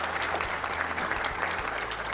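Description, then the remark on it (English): An audience at a Washington Post Live program applauds guests Dr. Tanya Ugaretz and Dr. Jason Matheny, clapping steadily in a dense, sustained wash of applause, fairly loud and even throughout the short stretch, with no voices standing out. “So let's give Dr. Tanya Ugaretz and Dr. Jason Matheny a big round of applause, and we'll move on to the next portion of our program.”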